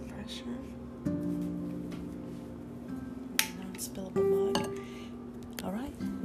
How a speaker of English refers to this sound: I poured that one a little too much. I know that one's going to spill over if I put my lid on.